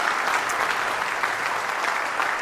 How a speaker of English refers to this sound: So I thought we'd just take a moment to celebrate that. So let's just celebrate and give them a hand, a round of applause. And they're doing such a great job.